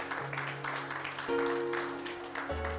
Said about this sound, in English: Why don't you give a hand clap for that?